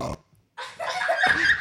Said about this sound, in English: I ate beans for dinner and they make me... Beans make you fart.